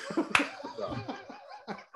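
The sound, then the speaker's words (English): A single loud, sharp hand clap rings out early, surrounded by bursts of hearty laughter that continue for the rest of the moment. “Anybody listening to just heard that clap, I'm sorry. That was really loud.”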